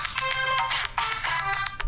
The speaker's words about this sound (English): Oh, look, my phone's ringing.